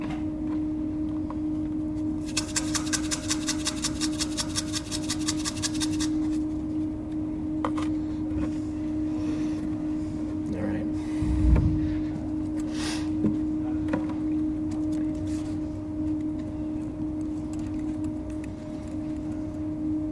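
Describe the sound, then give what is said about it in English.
A small tin of Earl Grey tea is shaken rapidly for a few seconds in front of a crowd during a writing exercise, giving a fast, even, bright rattle, followed by quieter scattered rustles and taps over a steady low hum. “Sometimes I think, if my mother could see me now standing in front of a crowd of people shaking a little tin of Earl Grey tea, she'd be like, what happened to that child?”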